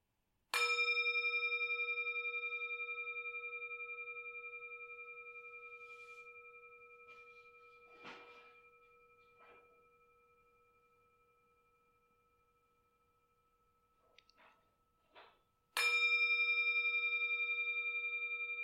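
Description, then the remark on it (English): A meditation gong, struck to close a meditation session, rings once with a clear, sustained tone that slowly fades over about fifteen seconds in near silence, then a second strike rings out loudly at the end. “This meditation, see if you can listen to it until the 3rd gong fades away.”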